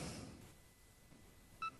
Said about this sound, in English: Okay, I've got mine set to the progress beeps, so you hear it beeping away like login success.